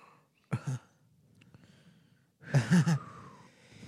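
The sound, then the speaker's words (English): A short, sharp burst of breath, then a louder, fuller sneeze about two seconds later, abrupt, with no talking around it. “Oh, fuck. Bless you.”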